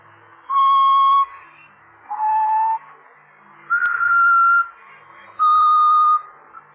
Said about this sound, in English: That song. Did you ever hear it before? Yeah. Bet you did. He's always whistling it. I heard it myself when he killed the last one.